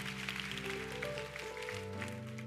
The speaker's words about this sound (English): Come on, keep clapping. Thank you, thank you, thank you, thank you, thank you.